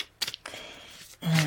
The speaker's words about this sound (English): Okay, so we're going to get the cards and we're going to begin with shuffling. Not my greatest skill, but hey, here we go.